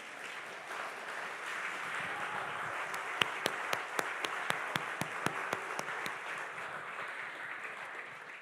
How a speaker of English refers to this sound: So thank you for being willing to lead and lead well. You should clap now.